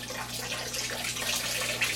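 A steady, continuous rush of distilled water pouring into a 6-gallon jug up to the 6-gallon mark, reconstituting concentrated grape juice to make wine; fairly loud, with a faint low hum underneath and no talking.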